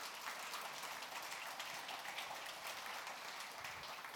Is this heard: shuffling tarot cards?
no